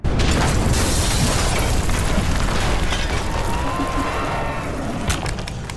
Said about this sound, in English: He heard the nearby exterior wall explode inward, shaking the room.